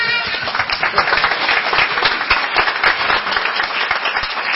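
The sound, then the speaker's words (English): A crowd applauds steadily for several seconds, many hands clapping in a dense, even roar of claps with no single rhythm, holding at a fairly loud level throughout. “Now clap.”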